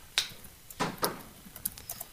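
Soft, irregular clicks of someone typing on a keyboard, a handful of quick crisp taps scattered over two seconds with no voices.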